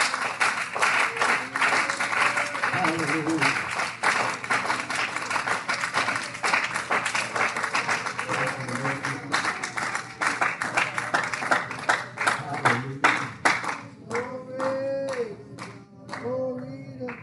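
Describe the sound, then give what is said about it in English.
A church audience claps their hands together while praising God in a sustained, dense wave of applause, loud, with some voices calling out faintly underneath and the clapping thinning slightly toward the end. “Why don't somebody just clap your hands?”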